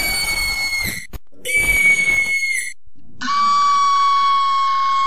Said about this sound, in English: Eyewitness accounts report hearing the Screecher's infamous scream, a high-pitched screech that our experts have recreated using their advanced techniques and knowledge.